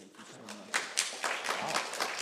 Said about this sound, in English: Thank you so much. Wow. Thank you. Yeah, exactly. Well, I'm glad they applauded first.